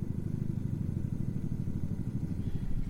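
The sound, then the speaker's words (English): A helicopter drones steadily, its rotor beating out a fast, low, pulsing thump with an engine rumble underneath, loud and unbroken for the whole stretch, with no one talking. “You hear the helicopter, Mr.”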